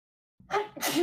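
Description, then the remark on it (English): A single fairly loud sneeze: a short breathy intake followed by a sharp, explosive burst that ends abruptly. “Bless you.”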